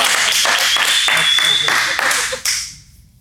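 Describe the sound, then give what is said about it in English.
An audience claps together in a loud, dense burst with a few stronger rhythmic beats, then the clapping thins and fades out over the last second. “That's a good time to clap, say hallelujah, something, y'all.”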